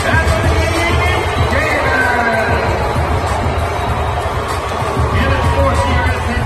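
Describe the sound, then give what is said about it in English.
A large New Orleans arena crowd at the beginning of a Pelicans vs. T-Wolves basketball game lets out a loud, sustained wash of booing and shouting that holds steady throughout, with a dense murmur of many voices and no pauses. “Okay, now we have the actual audio at the beginning of the game of last night, the Pelicans and the T-Wolves. And listen for the boos.”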